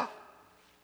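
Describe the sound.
A single quick, breathy gasp, a person imitating a sharp intake of breath. It starts abruptly, is fairly soft, and trails off into near silence.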